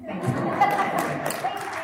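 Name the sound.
audience applause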